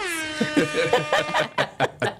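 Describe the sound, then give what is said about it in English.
A loud, buzzy air horn blast opens the moment, its tone sagging and fading within about half a second, followed by a few short bursts of voices. “I like the air horn.”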